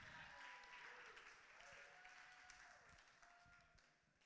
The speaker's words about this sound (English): Give Dad a round of applause.